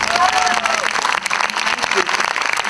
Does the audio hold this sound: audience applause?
yes